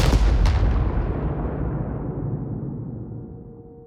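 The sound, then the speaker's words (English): A powerful explosion of a device destroying a base bursts out with a sharp blast and a quick second crack, then a deep, rumbling roar that slowly dies away over several seconds. No voices are heard. “With a heavy heart and Lily's haunting final words echoing in her ears, Sarah makes a harrowing escape just as the device explodes, taking the Cobalt Syndicate's base with it.”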